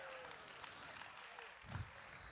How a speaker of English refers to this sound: 8 people clap. That means I got a lot of heads to preach to tonight.